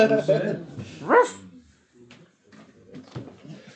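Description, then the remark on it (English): A dog lets out a loud bark and a rising yelp in the first second and a half, followed by softer, scattered sounds and faint voices. “Check this fucking dog.”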